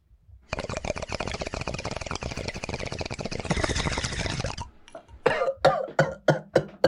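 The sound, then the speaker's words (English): A person who has inhaled too much cannabis smoke gives a long, raspy, rattling hack that runs for several seconds, then breaks into a quick series of loud, harsh coughs in steady succession, with no talking. “Oh, the cough, the legendary cough. Dude, I took in way too much weed right there.”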